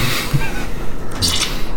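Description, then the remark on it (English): A refrigerator gives a short, wet gurgling burp, a bubbly low rumble with watery squishing and dripping sounds over under two seconds, fairly loud and with no voices. “The fridge burped, but other than that...”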